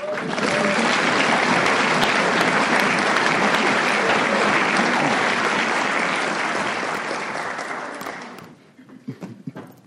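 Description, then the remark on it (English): Sustained applause from an audience at a meeting, dense, steady clapping for about eight seconds, then fades out to a few scattered claps and quiet. “We were clapping before it was over, huh?”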